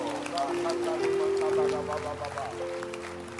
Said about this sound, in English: Clap your hands for this book.